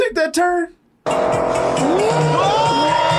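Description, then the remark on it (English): A brief burst of voice-like sound gives way to a loud, sustained engine roar with sharp, rising tire squeals as a sports car skids hard through a turn during a chase, intense. “He got a sports car. He can't take that turn.”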